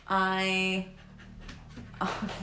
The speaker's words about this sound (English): You're going to hear our dogs in the background periodically because they just come everywhere with us.